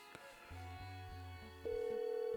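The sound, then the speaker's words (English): A phone line connects with a low hum, then a steady outgoing ringback tone begins and holds through the end, fairly clear, with no voices. “Phone's ringing.”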